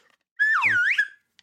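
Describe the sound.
A voice imitates the slide whistle part of a 1978 hit song in a single loud, wordless glide lasting under a second. The pitch swoops down, then curls back up before fading.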